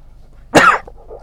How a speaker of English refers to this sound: I am coughing a lot today because I've yet to have my tea, and I think my allergies are kicking in